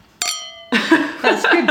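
A single bright clink of drinking glasses touching in a toast rings briefly with a clear, pitched tone, followed by people talking over it.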